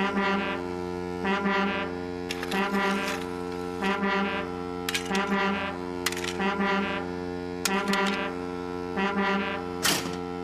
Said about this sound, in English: It's a new invention, a railway foghorn, said the Fat Controller. It warns you when there's fog ahead, like this.